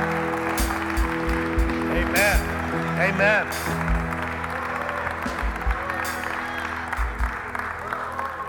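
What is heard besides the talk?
audience hand clapping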